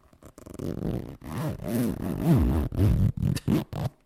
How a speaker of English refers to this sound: It's my favourite bit when I listen to these episodes, is the noise of the zip.